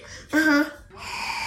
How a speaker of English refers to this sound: What do you think of that jalapeno cheddar Cheeto? Gross. Is it gross? Mm-hmm. Are you coughing? Mm-hmm. Is it too spicy?